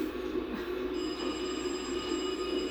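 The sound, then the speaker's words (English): A telephone rings with a steady, buzzing electronic tone that holds continuously without a break, fairly loud, with no voices over it. “At this point, I wouldn't be answering phones.”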